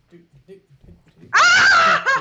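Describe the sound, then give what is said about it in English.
A rescued dog, Mira, also called Mrs. Derps, about 25 to 30 pounds, lets out a loud, high-pitched, wavering whine lasting about a second, after a few soft, low murmurs. “There he is! Hello, little doggy.”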